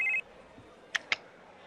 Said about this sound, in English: Phone rings. Phone rings.